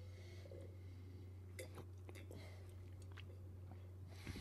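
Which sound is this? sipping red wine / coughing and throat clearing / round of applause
sipping red wine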